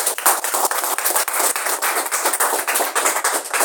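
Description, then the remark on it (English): An audience claps steadily throughout, a dense, loud patter of many hands with no voices over it, keeping an even intensity for a few seconds. “Let's clap for him.”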